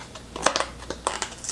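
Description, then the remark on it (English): A box of Oreo pudding mix being opened: a series of short, crisp crinkling and tearing crackles of cardboard and packet, irregular in rhythm and fairly soft, with no talking. “And then next, I'm going to open up the box of Oreo pudding.”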